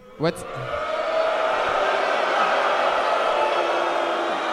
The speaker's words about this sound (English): Oh my god, everybody relax. I don't even know what you're booing about. Oh my god. Alright, you keep booing.